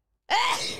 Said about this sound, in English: I have to sneeze. Of course you do.